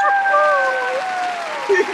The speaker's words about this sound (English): Putting a little applause in there.